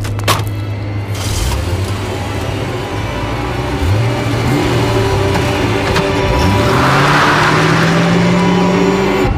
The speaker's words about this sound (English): Start up the car.